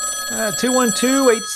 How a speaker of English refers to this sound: can you get that? It's the listener feedback phone.